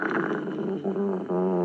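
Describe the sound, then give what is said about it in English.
A dog named Fifi growls low and steadily for under two seconds, the rumble turning more tonal and intense toward the end. No one speaks over it. “Fifi's not friendly”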